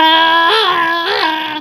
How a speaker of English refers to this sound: When you hear a bone-chilling scream.